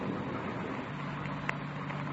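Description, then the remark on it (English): A faint, low engine hum from a car coming up the road comes in partway through, mostly buried under a steady wash of rain and wind, with one brief sharp tick. Elysian Park, around 5 a.m., as rain and thunder begin. “A car coming up the road toward us, sounds like.”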